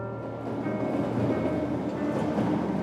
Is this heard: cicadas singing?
no